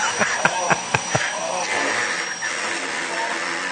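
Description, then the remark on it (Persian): A vacuum cleaner drones steadily while sputtering out five quick, sharp pops in its first second, like a string of little farts, then settles back into its even whirring hum. “جارو برقی به گوزگوز افتاد.”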